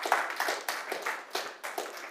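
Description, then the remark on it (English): An audience claps their hands to Jesus in a steady rhythm during a church service, roughly eight crisp, overlapping bursts in two seconds, bright and moderately loud with no voices over them. “Can somebody clap their hands to Jesus in this place?”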